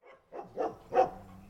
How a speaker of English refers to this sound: A rambunctious mix of German Shepherds, Poodle Puppies, Chihuahuas, and more are all interacting with each other at Dog Jack's, a kennel and doggy daycare south of Jackson. Do you ever get sick of the barking or not? You just tone it out.